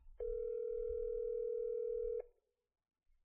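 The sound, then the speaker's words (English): A steady, loud telephone tone hums for about two seconds over a faint low rumble as a man calls his wife on his phone, then cuts off into silence, like a phone line on an outgoing call. “All right, let's try using my phone. Okay. I'm going to call my wife.”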